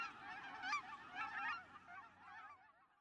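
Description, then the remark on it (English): A flock of Aleutian cackling geese honks continuously in a chorus of high, cackling calls. The yelping notes overlap steadily, with no talking. “Migrations: The Triumphant Comeback of the Aleutian Cackling Goose”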